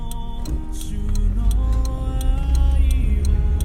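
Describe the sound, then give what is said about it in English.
A steady, heavy low engine hum fills the inside of a car, with faint music and a regular ticking running over the drone throughout. “You won't be able to hear it great, especially as noisy as this car hums.”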